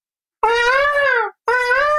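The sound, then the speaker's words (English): A person mimics a bird, interrupting golfer Webb Simpson's answer to a question about his slow start: two loud, sustained, high-pitched hooting calls, the first longer and slightly falling, the second cut off after a brief pause. “And before he can get out a third bird call”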